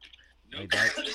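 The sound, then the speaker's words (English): A short throat-clearing sound that rises into a rough, breathy cough, a single burst lasting under a second, heard alone. “Can we not cough on the pod?”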